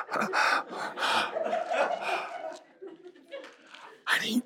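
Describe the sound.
A person imitates a child's heavy breathing up close, with loud, rhythmic breathy huffs and gasps about once a second, then a sharp final exhale.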